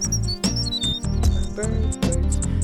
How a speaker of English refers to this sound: Birds. I like birds.